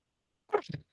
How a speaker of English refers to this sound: Bless you.